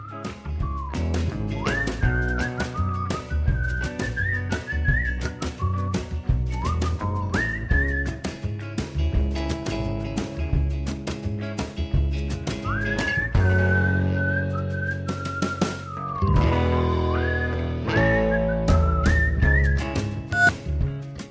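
A clear whistled melody glides and sustains over a full band backing with steady drums and bass, the tune rising and falling in long phrases throughout, loud, with no singing.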